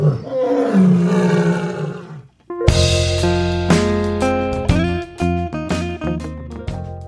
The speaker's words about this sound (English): The loud sound of the lion's roar came from the zoo.